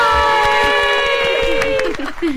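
Loud scattered clapping crackles throughout, under a long, steady, slightly falling cheer or whoop that holds one pitch before trailing off near the end.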